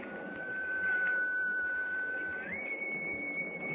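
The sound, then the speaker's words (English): An eerie, thin whistle in swirling fog holds one steady, piercing note, then slides up to a higher pitch and holds again, over a constant hissing, rumbling background. “Jim, that whistle came from right in front of me.”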